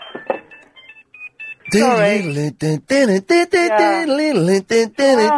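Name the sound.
phone ringing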